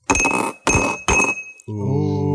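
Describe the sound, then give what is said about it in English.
Whiskey stones drop into a glass one after another, three sharp ringing clinks about half a second apart, followed by a sustained low voiced 'ooh'. “I'm gonna grab a whiskey stone or two. Oh yeah. And I'm gonna drop them in there.”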